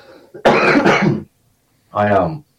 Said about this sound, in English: I keep coughing.